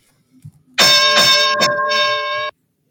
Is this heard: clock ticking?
no